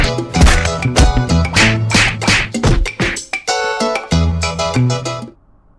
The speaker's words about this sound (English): Here we are. I need that wood. Yes, I'm punching some trees.